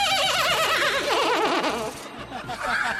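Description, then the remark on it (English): A person imitates a horse whinny with a high, wavering, quavering voice that trembles rapidly up and down, loud, trailing off into breathy snickering over about three seconds. “It felt like a horse.”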